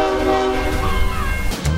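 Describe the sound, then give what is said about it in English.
A train approaches on a railroad track where a car is stuck, its horn blaring in a long, steady tone over a loud rumble, with a heavy clunk near the end. “Can these good Samaritans get it out of the way before the train comes?”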